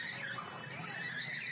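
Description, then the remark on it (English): A car's tires squeal in a steady, wavering screech over a continuous engine rumble as it is shoved along by another car into the back of a limousine carrying a bride and groom, loud, with no voices. “Oh, and he's getting pushed out by another car.”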